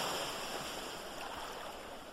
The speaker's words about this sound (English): I love the sound of the waves as they crash against the seashore. As a matter of fact, I picked up the habit years ago, decades now, of sleeping to the sound of the ocean.